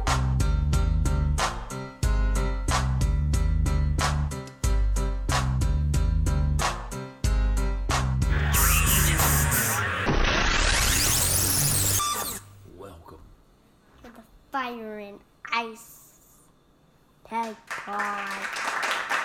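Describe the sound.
A live audience claps amid loud rhythmic music, the applause swelling into a dense, noisy wash for several seconds before fading as voices start talking.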